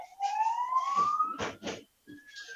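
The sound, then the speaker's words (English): An emergency vehicle siren wails outside an open window in a large city, a rising tone sweeping upward for over a second before broken bursts, fairly loud with traffic noise underneath. “Boy, that siren is really loud there.”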